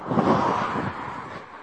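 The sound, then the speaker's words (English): A car passes by on a pitch-black road, its broad rushing tire-and-engine noise loudest at first and then slowly fading as it moves away. No one speaks. “Other than the odd passing car, like this one coming up now. You might hear it.”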